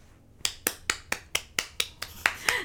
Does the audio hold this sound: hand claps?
yes